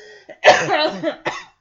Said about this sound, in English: I apologize about the coughing. I'm finally seeing a doctor about it. I've had this cough for over a month now. It's the last thing that remains from the cold I had just before Christmas.